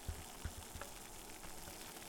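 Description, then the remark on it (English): A pot of water for cooking spaghetti, just starting to boil, with a steady low simmering hiss and a few soft bubbling pops and knocks near the start, quiet. “The water here is just starting to boil.”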